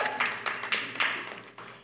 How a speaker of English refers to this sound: Give me a hand clap to encourage me.